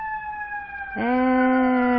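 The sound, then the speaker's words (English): A loud fire truck siren as the truck passes a house on a fine 75-degree day holds a high, steady wail, then abruptly drops to a much lower, richer tone that sustains to the end. No one speaks over it. “And I may stop talking as soon as this fire truck passes my house. Because I know you can hear it.”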